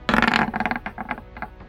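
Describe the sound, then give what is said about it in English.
Dice clatter onto a hard table, a loud rattling burst at first, then several lighter clicks and taps spaced out as they bounce and settle, with no talking; the dice are rolled for a fortitude save and land on 16, a fail. “Oh, the DC is incredibly high on this, and that is a fail. Yeah. 16 on the dice.”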